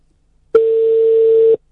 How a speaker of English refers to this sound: Answer the phone